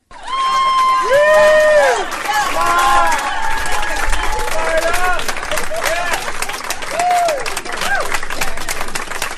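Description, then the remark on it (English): Sustained, loud applause from people sitting at school desks in a classroom, enthusiastically applauding a man as he walks in, a dense steady clatter of many hands clapping, with rising and falling cheers and whoops woven through it for the whole stretch. “There's a bunch of people sitting in school desks in a classroom, and he walks in, and they, you'll hear a long applause. They enthusiastically applause for him, and then he's all excited and just giddy.”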